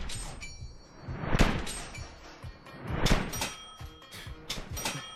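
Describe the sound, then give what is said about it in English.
Two loud metallic cash-register ka-ching sound effects, about two seconds apart, each with a bright ringing tail and some clattering between them. Sharp, with no voices. “AK-47 making a cash register noise.”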